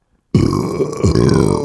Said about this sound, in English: My bad. Excuse me. It made me burp like a yawn. Mm-hmm. It is a lot like a yawn.